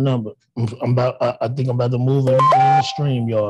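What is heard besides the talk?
phone alert beep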